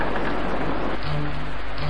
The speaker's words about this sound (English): Then it began to rain. It rained so much, the water was over the meadows. It rained so much, it covered the towns. It rained so much, it even covered the mountains.